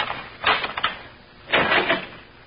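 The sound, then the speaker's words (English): A key scrapes and clicks in the lock of a closet door in two short bursts of metallic rattling, the second a little longer, with a faint hiss between them and no voices. “Closet door still locked, all right? Just a minute till I get the right key here.”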